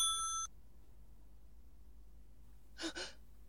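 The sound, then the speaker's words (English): A brief burst of a telephone ringing cuts off within half a second, leaving a faint quiet hum, then a short breathy gasp near the end. “I won't answer it. I won't. I won't. I won't even if it goes on ringing all night.”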